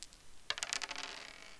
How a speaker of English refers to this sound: So without further ado, why don't we go ahead and roll those dice?